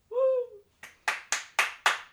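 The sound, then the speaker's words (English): A short vocal whoop, then a round of applause from a live audience, heard as about six sharp, evenly spaced claps in a steady rhythm, fairly loud, with no talking over them. “Can we get like a round of applause?”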